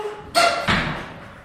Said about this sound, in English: I really must get some WD-40 for that door. Makes this place sound like a haunted house.